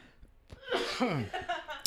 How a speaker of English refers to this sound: But would you consider it a fail? No, why? Because you're coughing? Yes. No. Sometimes I cough on different. Some days I don't cough as much as other days.